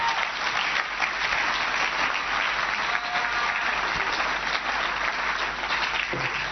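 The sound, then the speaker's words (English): An audience in a church service claps their hands for the Lord in a dense, steady burst of applause that stays loud and even for several seconds, with no voices standing out above it. “Why don't you clap your hands properly for the Lord?”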